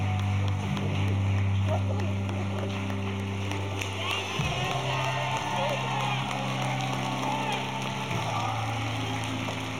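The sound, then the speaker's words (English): A family crowd cheers and whoops steadily throughout for a boy being baptized, blended with a loud, low droning hum like an engine running underneath the noise. “You hear those people cheering for you?”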